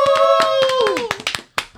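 Scattered audience applause, a run of sharp irregular claps, with a loud sustained whoop that holds steady and then slides downward in pitch before the clapping continues on its own.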